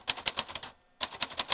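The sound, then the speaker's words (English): Rapid mechanical keystrokes from a vintage typewriter as a Typewriter Rodeo poet types a custom poem, sharp clacks in quick succession, a brief pause, then another burst of typing, with no voices. “We write custom poems on vintage typewriters about any topic you want.”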